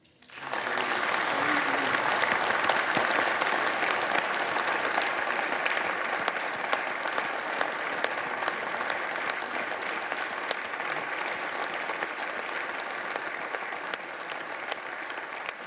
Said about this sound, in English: You can hear that that clap is real. It's from every member of the Senate. It is not, that is not a partisan clap. No, that is not a weak clap. That is a "we still have a country" clap.